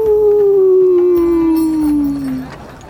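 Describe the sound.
A person howls like a wolf, one long, loud, sustained wail that slides slowly downward in pitch before fading out, heard alone.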